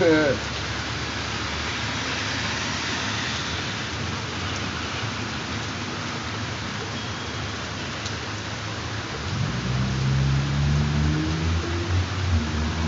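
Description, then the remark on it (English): Steady rain-like hiss fills the background, then near the end an electric car pulls up, its motor giving a rising, humming whine that swells louder over the last few seconds. “Okay, the wife just pulls up now. She had a flat shirt. She got an electric car.”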